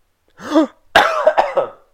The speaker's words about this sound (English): You okay? I'm like, no, that hurt actually. That's like a painful cough.